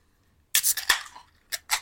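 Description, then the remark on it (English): Beer cans snap open with a sharp crack and a burst of bright, fizzy hiss, followed by two shorter hissing spurts. No one speaks. “Okay, let's crack them up.”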